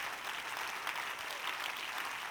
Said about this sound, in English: Go ahead and clap your hands to the Lord as you stand. Go ahead and clap your hands to the Lord.